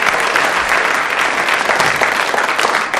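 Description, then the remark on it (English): An audience applauds loudly for four audience members who came up and held a bottle, with dense, crackling clapping that holds steady throughout before easing slightly at the very end. No voices stand out over the clapping. “A round of applause for the four gallant members of the audience who came and held a bottle there.”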